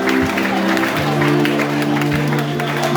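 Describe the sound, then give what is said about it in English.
A crowd claps hands while praying, in a steady, dense patter, loud and continuous, over a sustained low organ-like drone and the murmur of many voices. “Pray, clap your hands and pray this prayer.”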